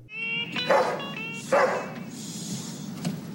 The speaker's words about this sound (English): So Buck barks in the back of the Italian restaurant for food.